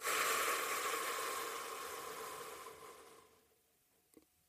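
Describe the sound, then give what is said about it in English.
A long, breathy whoosh of air, a deep breath in and out taken during a short meditation, starts strong and slowly fades over about three seconds into near silence, with a faint click at the very end. No one speaks. “Okay, let's settle in and take a deep breath. And let it out.”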